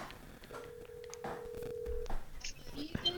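A telephone call ringing out: a single long, steady, low-pitched ring tone holds for about a second and a half over faint background noise, followed by a few brief clicks.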